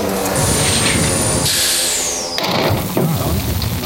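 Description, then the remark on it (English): A loud, continuous engine rumble with heavy mechanical chugging and a bright hiss on top, briefly joined by a high whine that slides downward, heard in the engine car of a train. “Well, let's just see what's going on in this engine car.”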